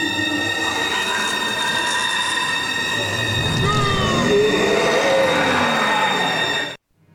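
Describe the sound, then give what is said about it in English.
A video game monster lets out a long, loud screech: layered shrill tones with sliding, wavering pitch over a rumbling roar, sustained for several seconds before cutting off abruptly. “It's like Lugia making a fucking screech.”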